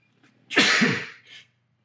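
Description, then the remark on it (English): A single loud sneeze caused by allergies: a short intake of breath, then an explosive burst of breathy noise followed by a softer trailing tail, with no talking. “I have to sneeze.”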